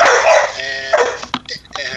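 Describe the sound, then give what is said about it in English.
A dog barks several times in quick, uneven bursts, fairly loud, with some higher yipping, whiny tones between the barks. “And her dog barking in on her.”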